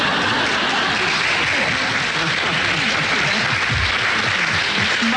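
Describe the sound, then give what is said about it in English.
A steady wash of studio audience applause during a radio panel game, clapping at the panellists' sharp exchanges, many hands clapping densely and evenly for the whole stretch, loud and sustained without pauses, with a faint hint of voices mixed into the clatter. “I must explain to the listeners, the audience are clapping because they're all slinting their eyes now to see how sharp they can be with each other.”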